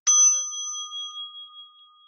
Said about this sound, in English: Allowing the bell to serve as a call to presence.